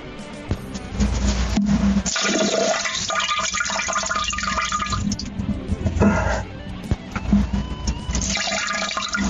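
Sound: splashing water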